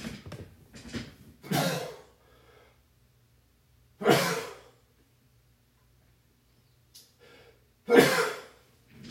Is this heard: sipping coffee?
no